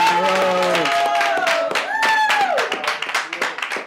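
A burst of clapping from a small group welcoming a guest live at the Trap Music Museum, steady sharp claps throughout, mixed with long, rising and falling vocal tones like cheering or a drawn-out shout over the top.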